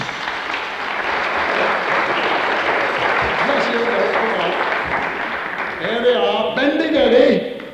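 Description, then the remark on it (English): An audience claps steadily for three Welsh brothers and two Welsh sisters, a dense wash of applause lasting several seconds, with voices rising over the clapping toward the end. “Give them a clap.”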